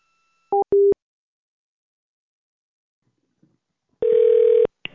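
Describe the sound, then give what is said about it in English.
Telephone call tones as a call is placed to the Homewood Suites hotel in downtown Washington, D.C.: two short electronic beeps, then a pause and a longer steady, buzzy ringing tone that cuts off abruptly. No one speaks. “I'm going to make a call.”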